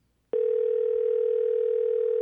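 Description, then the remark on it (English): A steady telephone dial tone starts abruptly after a brief quiet moment and holds at a constant, loud, unbroken pitch until the end. “We got a dial tone.”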